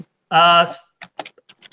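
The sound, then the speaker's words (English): A brief voiced sound, then a quick run of light, irregular keyboard clicks, like someone typing a few keys on a computer keyboard. “are you typing? Because we can hear your keyboards.”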